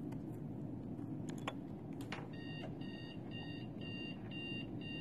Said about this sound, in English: Okay, where the ringtone thing at?